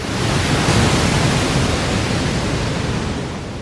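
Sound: waterfall roaring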